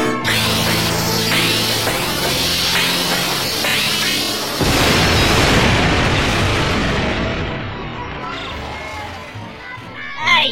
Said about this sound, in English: Bring down the heavy weapon. Ready? Aim. Do we really need to aim? We're shooting at a door at point blank range. All right then, open fire!